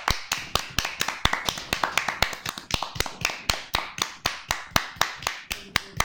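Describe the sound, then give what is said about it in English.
Sharp, steady rhythmic clapping fills the stretch as a woman steps in, dozens of crisp claps landing on a regular beat like a group clapping in unison, with no voices. “When she steps in, we all just clap.”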